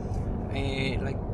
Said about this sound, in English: An important thing that I want to talk to the listener about, we are riding now in Germany on the road, and the truck was part of the time like on the right side, like sticking really to the truck in front of us.